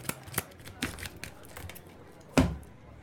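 Players shuffle their hands of playing cards in a card game after a Marnie card is played, a run of quick papery clicks and flicks ending in a louder riffle burst, with no talking over it.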